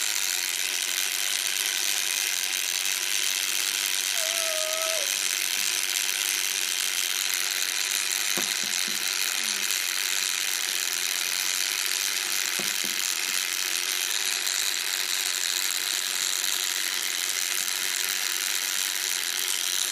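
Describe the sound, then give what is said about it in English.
A wind-up timer ticks away in a rapid, steady mechanical ratchet that holds an even loudness for the whole stretch, with a couple of slightly sharper clicks partway through and no voices. “the very annoying sound. Timer. Timer thingy. Alarm okay. clock thing.”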